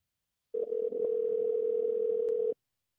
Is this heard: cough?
no